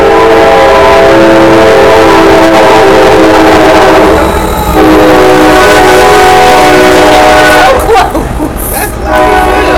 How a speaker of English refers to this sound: I'm gonna stop talking. Amtrak.